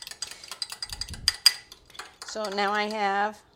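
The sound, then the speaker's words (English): A fork beats a cracked egg rapidly in a bowl, giving quick, irregular clinks and scrapes for about two seconds, then a steady, mid-pitched hum takes over briefly. “I'm going to just use a fork and beat it up a little bit.”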